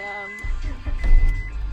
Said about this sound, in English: Would it be crazy if I turned the car on just to roll the window up? No, I would love that. A little bit. should we roll both of them up?